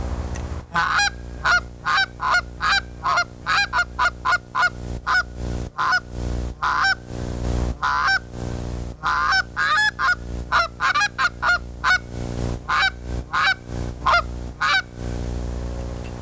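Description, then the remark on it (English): A walnut goose call is blown in quick, rhythmic bursts of loud honks and clucks, some short and choppy, others drawn out, with no talking over them. “This call has got more of a high end to a low gander to a young goose.”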